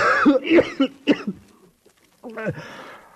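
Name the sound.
cough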